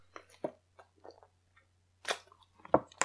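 Someone sips water: a scattering of soft wet mouth noises and small slurps, then a couple of louder gulps toward the end, over a steady low hum.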